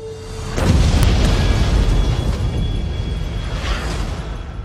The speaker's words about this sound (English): An explosion rocks the city today.